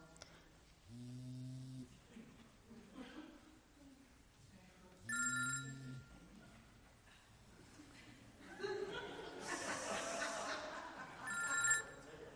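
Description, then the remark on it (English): A mobile phone rings in short melodic bursts during a church service, three times with pauses between, clear, while faint murmuring and a burst of chuckling fill the gaps. “I can't talk. I'm in church. Don't text me either, okay? I'm about to turn my phone off.”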